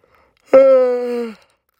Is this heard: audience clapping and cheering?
no